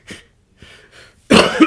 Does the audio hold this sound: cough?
yes